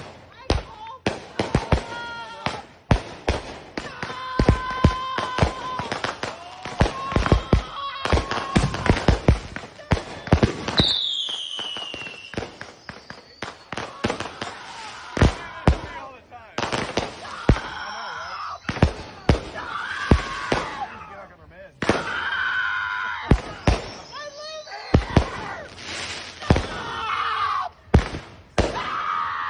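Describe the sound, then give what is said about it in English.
Fireworks burst on Independence Day in a rapid, irregular barrage of sharp bangs and pops, with a whistling rocket, while a woman's raised, distressed voice shouts over the explosions. “So this episode's TikTok liberal is a lady that lost her mind because of fireworks on Independence Day.”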